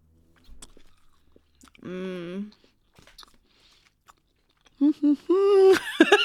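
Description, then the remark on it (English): Chewing on a chewy peanut candy bar, the original dark chocolate kind: soft sticky clicks and mouth sounds, broken up by short hummed, appreciative voice sounds midway and again near the end. “Try this peanut chew.”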